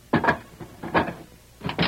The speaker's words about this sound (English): Brant, open the door! Hurry!